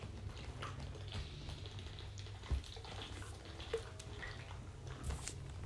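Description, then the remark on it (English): Someone gulps down a can of energy drink in one go, a steady low sloshing broken by a few sharper swallowing clicks, with no talking. “Should we chug the whole thing and then do it?”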